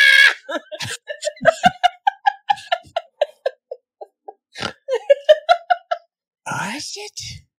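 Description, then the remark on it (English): A voice imitates a tiny insect screaming: a rapid string of shrill, squeaky yelps, roughly twenty quick bursts with brief pauses, ending in a harsher squeal. “He just hears screaming.”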